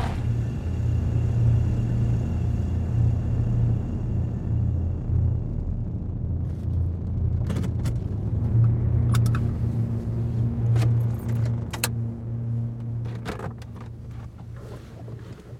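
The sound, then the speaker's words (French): A steady, loud engine drone with a deep humming pitch runs throughout, joined by occasional sharp clicks and rattles, as a car is driven to a daycare on a hot day with no one talking. “J'ai immédiatement repris le volant jusque-là.”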